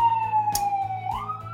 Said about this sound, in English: As mentioned in the previous podcast, our recording was interrupted by the sound of an ambulance going by. So sorry about this, I'm near a hospital.